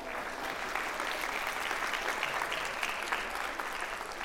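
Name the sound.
audience clapping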